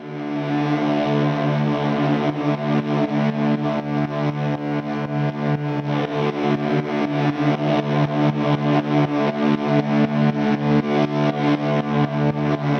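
A thick, distorted drone pumps rhythmically, dipping in volume on every steady kick drum hit and swelling back between beats, creating a continuous breathing, sidechained pulse with no voices.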